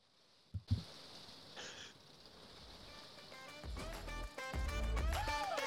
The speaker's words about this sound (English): So welcome back to part two from a rain-sodden Parklands and Kingsthorpe. The rain is coming down, so you do hear a little bit of interference. It's not me being technologically inept again. It's just that there's like a bit of a storm going on.